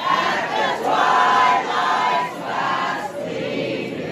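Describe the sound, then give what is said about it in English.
A crowd of parents protesting critical race theory sings the national anthem together in unison at a school board meeting after the board ended the meeting and public comment early, long sustained phrases at a steady, fairly loud level, with slight dips between lines. “So the crowd started singing the national anthem.”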